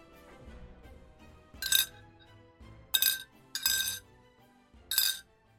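After a gust of wind, metal chains clink four times in uneven succession, bright, over a low steady rumble with no voices.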